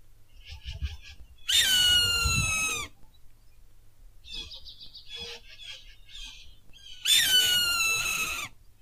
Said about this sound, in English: Oh man, there's a hawk. That's got a lot of meat on it.